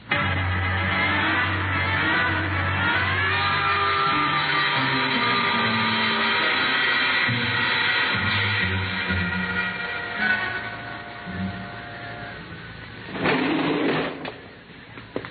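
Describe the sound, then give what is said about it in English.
A service elevator hums steadily as it descends to a basement garage, a low mechanical drone with a whining motor tone throughout, ending in a brief louder clunk and rattle as it nears the bottom. “There's a service elevator that leads to the basement garage.”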